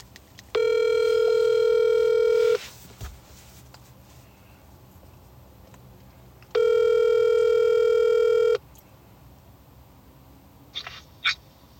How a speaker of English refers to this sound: So, you know, we're going to try to talk to my brother here and see if he picks up the phone. He's probably not.